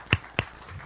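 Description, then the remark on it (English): Two crisp, loud hand claps, given as a hand clap for the Lord, land about a quarter second apart, followed by a faint, low background hum with no talking. “Give the Lord a better hand clap.”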